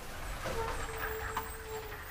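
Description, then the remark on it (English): A truck rumbles by in front of an apartment building with scraping and brushing noises as it strikes overhanging tree limbs, plus a couple of sharper knocks, steady and fairly muffled. “And that would be a truck hitting all the limbs in front of my apartment building.”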